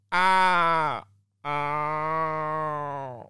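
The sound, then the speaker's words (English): A person imitates an Australian raven with two long, drawn-out, harmonically rich wailing calls, the first about a second long, the second longer, each sagging in pitch at the end. “If you don't understand this, look up Australian Raven. Yeah. So it's usually here in the morning, especially when you're out in the bush in Australia, and you can hear this.”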